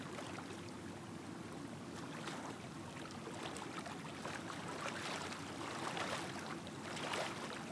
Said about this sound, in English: I want you to walk down to the water's edge and feel the warm waters surround your feet as the waves crash and then recede.